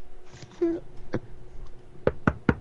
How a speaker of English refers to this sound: There is another knock on the door.